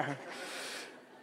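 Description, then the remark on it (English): A crowd of people bleat together like sheep, a brief, blurred chorus of overlapping voices that swells, holds for under a second, then fades out. “Any sheep in here? Let me hear you. Bah. That's what y'all sound like all the time, just bah.”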